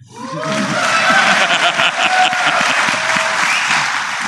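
An audience breaks into sustained applause in answer to the question of who just wants a beer, a 7-year-old girl in the front among those clapping; dense rapid clapping that swells quickly and stays loud throughout, with a few cheers and whoops rising above the patter.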